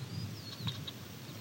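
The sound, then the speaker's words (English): A Savannah Sparrow gives three short, sharp ticking calls, spaced irregularly and fairly soft, over an outdoor background hum with a faint thin whistle. “So this Savannah in front of me is ticking.”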